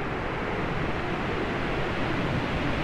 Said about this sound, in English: Let's go through another preset here. Dark wind. Ooh, white noise wind. That's sick.